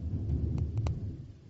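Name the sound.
thunder rumbling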